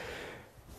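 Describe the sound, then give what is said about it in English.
A single sneeze: a sudden breathy burst that fades quickly into a soft exhale, with no talking around it. “excuse me, thank you.”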